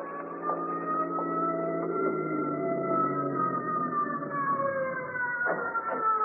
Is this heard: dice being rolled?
no